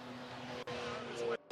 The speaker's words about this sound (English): We've got a car coming back into the pits, and it is the 37. Once again, I was talking to the team owner, Mario Benuto. He informed me it's a brake issue, and this is not a track where you are okay to have any kind of a brake issue.